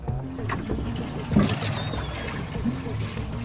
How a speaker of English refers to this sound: dragged the cast net full of fish to the back of the boat, where they were deposited into the live well.